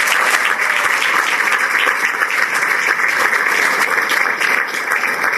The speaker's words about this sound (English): They are here. Could you please stand? I want folks to see you and receive a round of applause for DPD in the house.